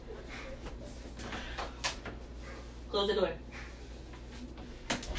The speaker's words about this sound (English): Close the door.